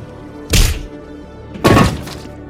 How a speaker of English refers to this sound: That's your favorite part of Mass Effect when he punches the reporter.